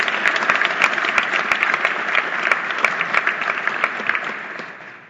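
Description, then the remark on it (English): An audience at an Empire Club of Canada event applauds the head table steadily, many hands clapping in a dense, bright wash with a few sharper individual claps standing out, holding strong for about five seconds before tapering off at the end. “Ladies and gentlemen, a round of applause for your head table.”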